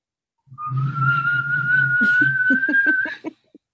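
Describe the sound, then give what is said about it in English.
Someone whistles a single long, steady note that creeps slightly upward in pitch for about three seconds, over a low droning hum with a few rhythmic taps near the end. “I want to see if it actually does make a whistling sound, which I have not tried it.”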